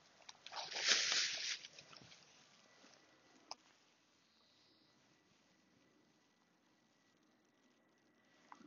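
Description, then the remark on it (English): A brief burst of plastic bag crinkling and rustling as a small dog poo bag is knotted after picking up dog poo at the side of a field on a dog walk, then a faint click and a long stretch of quiet outdoor background. “I'm just tying up the poo and I'm going to put that in my pocket.”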